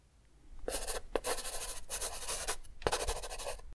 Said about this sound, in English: That one's slightly trickier. Do you know that sound? You've definitely heard that sound before. It is a pencil writing on some paper.